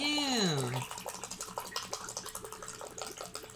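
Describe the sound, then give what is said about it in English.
Water that is not cold pours steadily from a big water bottle in a splashy, glugging stream to fill someone's drink, preceded by a brief falling vocal sound from someone at the start. “brought his big old water bottle. Man, thirsty. Hell yeah. Fill me up, bro.”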